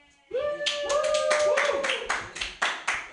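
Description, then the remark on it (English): An audience claps in a quick, loud burst of applause, with a cheering 'woo' rising over the first half and claps thinning into a few sharp spaced slaps. “Yay! Clap!”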